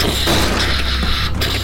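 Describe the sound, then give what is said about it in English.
Heavy iron doors slam shut with a deep boom, followed by a few sharp mechanical clanks as locks engage, all over a loud, dense rumbling wash of noise. “You slam it closed. And just as you do, as the iron doors close and they lock just behind you, click into place”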